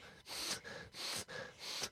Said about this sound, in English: But before I do, I have to sniff the edge of every page of the book.